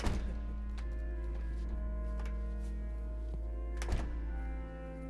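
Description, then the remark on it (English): The heavy, impressively large wooden door of Magdalen Chapel at Magdalen College, Oxford, thunks open, a few latch clicks and knocks follow, then it shuts with a deep, resonant thud near the end, all over a steady low rumble with no talking. “Right, so we go through the impressively large door.”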